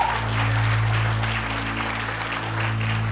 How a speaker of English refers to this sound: Why don't we give a round of applause for those people? Thank you, Lord.